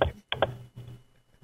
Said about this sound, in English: What are you typing? Nothing. I was trying to find out what the Wi-Fi, if it's wireless N or if it's wireless AC. I can't find it.